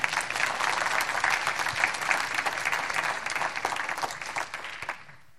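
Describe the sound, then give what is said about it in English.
A church audience breaks into steady, dense applause after a video of highlights from 2017 is shown on screens, a broad crackle of many hands clapping at a fairly loud, even level before it tapers off and fades out near the end. “How about that? It's worth a round of applause, isn't it?”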